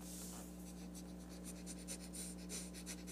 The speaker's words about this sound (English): There's some sniffing ASMR.